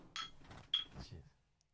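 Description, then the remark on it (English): Beer glasses held up to the microphone clink together in a toast: two sharp, bright knocks about half a second apart, the second ringing briefly, over a soft low rumble of handling. “Cheers, hold that up to the microphone there, bud.”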